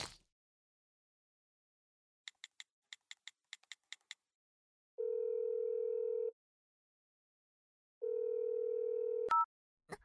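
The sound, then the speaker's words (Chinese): A quick run of telephone keypad beeps is followed by two long, steady ringback tones and a brief click as a woman phones her husband. It is clear, with no voices. “我这就打电话给我老公”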